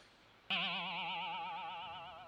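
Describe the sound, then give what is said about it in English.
A phone sound effect: after a brief quiet moment, a loud, buzzy electronic tone kicks in abruptly and holds steady, its pitch wobbling in a fast, boing-like warble until the end. “See now my computer, my phone's making all these noises and sound effects.”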